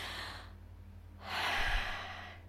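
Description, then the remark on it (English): A slow, deep breath drawn in and let out: a soft airy inhale, a short pause, then a longer, louder exhale like a sigh. No talking. “So carb heavy foods, deep breathing, which is probably something I should do right now.”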